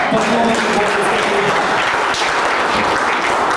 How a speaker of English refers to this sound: Give him a hand clap and say yes.